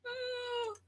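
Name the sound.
cat meowing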